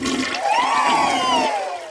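A toilet flushes in one steady rush of water lasting about two seconds, with swirling, whistling tones that rise and fall over the hiss. No voices.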